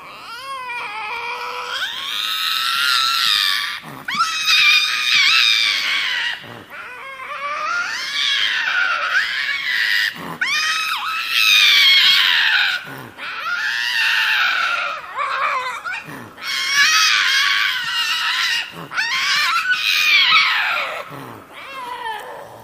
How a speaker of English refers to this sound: That was a lynx. It's a type of big cat.